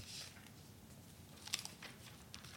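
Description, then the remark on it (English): Quiet paper rustling with a few brief crisp crackles and flicks, like pages being shuffled or turned, over a soft low background hum. “Another rustling of paper.”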